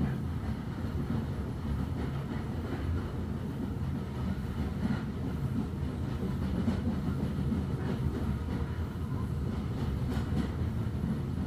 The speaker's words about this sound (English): The engine train reaches the bridge, suspending itself high over the glen, pulling the carriages through behind it.